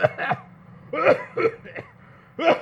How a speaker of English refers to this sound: Taking her on a date while you have the flu. Oh, nonsense. It's just a... crippling cough.